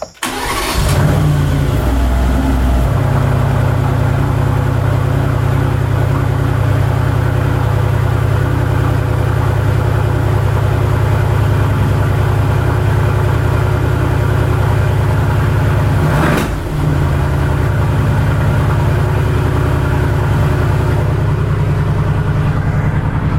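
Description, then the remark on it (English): A Mercedes-AMG GT R engine fires up with a loud, deep rumble, then settles into a steady, throaty idle, with a brief blip of the throttle partway through. No one speaks. “I couldn't hear you actually say anything over the engine of that car.”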